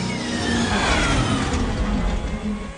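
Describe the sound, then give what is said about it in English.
A speeder's engine on Jedha, just cured of misfiring, revs loudly, a steady rough mechanical roar with rising and falling pitch that fills the whole few seconds, with no voices. “Just because you guessed what was wrong with our speeder. It means no more people will be scared by a misfiring engine today.”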